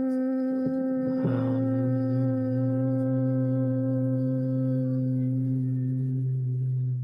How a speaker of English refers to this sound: So humming, whatever that is, all the reactivity around this loss is what we want to hum. So we're going to inhale. We're going to hum three times. Sit up tall, and it's hum.